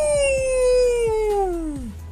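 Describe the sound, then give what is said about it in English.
A dog lets out one long, loud howl: a sustained, tuneful tone that holds steady, then slides downward in pitch and trails off after about two seconds. “Is that a howl? That was a great howl.”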